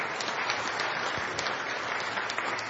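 A steady round of applause from an audience, dense overlapping claps forming an even, sustained wash of sound with no speech over it, holding at a constant level throughout.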